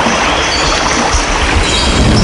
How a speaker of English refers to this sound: No, waves. Ah. Waves.